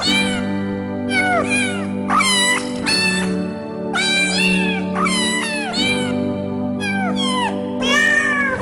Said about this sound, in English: Are you killing a cat?